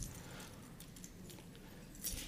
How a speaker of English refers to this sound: Do you guys have keys on you? Does anybody have keys? Go ahead and grab your keys. If you have keys on you, you don't have to dig through your purse unless you really want to. So your keys.